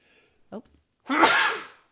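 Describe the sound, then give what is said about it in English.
A short sharp intake of breath followed by a single loud, explosive sneeze, with no talking around it. “I was pointing at you to talk while I was trying to sneeze.”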